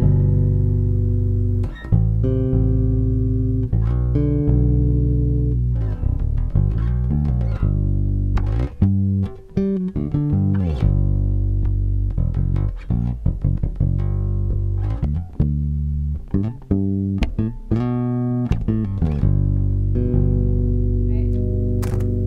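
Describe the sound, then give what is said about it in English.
An electric guitar on its front pickup plays a steady run of picked notes and chords, warm and full-bodied, with sharp string attacks and ringing sustain at an even, fairly loud level. “So here we've got these front pickups right here.”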